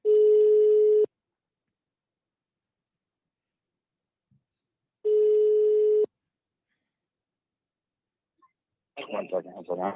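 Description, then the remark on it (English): An outgoing phone call, placed to be merged with another call, rings on the line: two steady, buzzy ringback tones about four seconds apart, each lasting a second, followed by a voice starting to speak. “I'm gonna merge the calls here in a second. Once he picks up, if he picks up.”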